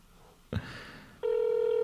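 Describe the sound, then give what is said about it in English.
A telephone call's ringing tone: a brief click or clunk, then a steady, loud electronic tone that starts abruptly and holds without a break until the end. No one speaks. “They just fucking picked up and I hung...”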